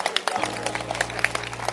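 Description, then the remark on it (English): A church audience claps their hands together at a preacher's call to clap during a sermon: a dense, steady patter of many overlapping claps over a low, constant hum, with faint voices mixed in. “Clap your hands.”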